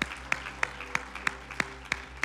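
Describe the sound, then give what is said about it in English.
An audience claps their hands to the Lord in a steady, even rhythm, sharp unison claps repeating about three times a second over a low background hum, with no one speaking. “Clap your hands to the Lord if you love the word of God.”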